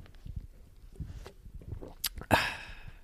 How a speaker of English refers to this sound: I'm drinking a matcha, if you can hear this.